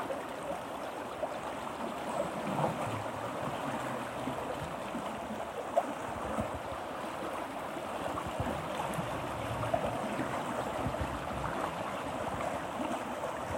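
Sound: flowing river water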